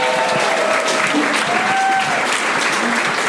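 A live audience applauds steadily, dense clapping filling the whole stretch at a fairly loud, even level, with a few faint whoops rising from the crowd.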